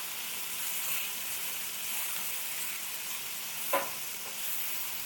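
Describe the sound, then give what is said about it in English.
Steady sizzling of vegetables, including olives and pepperoncini, sauteing in a hot pan over high heat, a continuous crackling hiss, with a brief scrape or stir near the end and no voices. “So now we're hot, we're sizzling here.”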